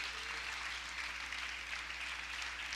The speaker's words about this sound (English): Give the Lord a good hand clap if you're glad to be a part of his people.